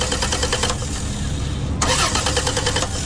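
A car engine cranks in rapid, rhythmic churning bursts that never catch, pauses briefly, then grinds through another long attempt, loud with no voices.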